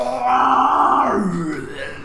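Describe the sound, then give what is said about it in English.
A human voice growls out a long, strained roar for a larger-than-normal monster, rough and sustained for over a second before sliding down in pitch and trailing off into a low rasp. “And it roars once more.”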